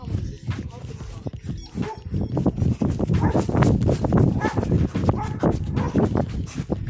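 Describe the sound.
A dog makes repeated sharp sounds, mixed with busy clattering, hoof-like knocks and steps that continue the whole time, with muffled voices in the background.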